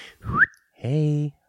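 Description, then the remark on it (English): A person whistles a short, quick upward-sliding note, fairly loud, followed after a brief pause by a steady, buzzy voiced tone lasting about half a second. “Not anymore, because we're stopped whistling.”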